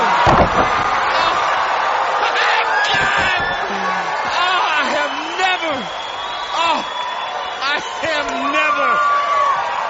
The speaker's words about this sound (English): I've never seen anybody slammed like that.